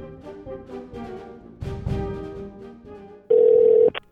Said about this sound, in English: So the phone lines here at the DLS College Consulting Office are ringing off the hook.